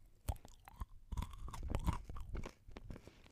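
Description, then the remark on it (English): A loud crunching bite into a candy bar, followed by several seconds of crisp, irregular chewing crunches, with no talking. “I say that as you can't hear the candy bar, but I'll take a crunch so that you can hear it.”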